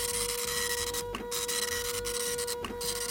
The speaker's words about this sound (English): Oh, and I hear Carl printing out the first question.